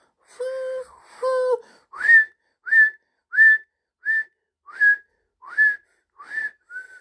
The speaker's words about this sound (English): So Jo stood beneath the thick green leaves of the old oak and whistled loudly 7 times.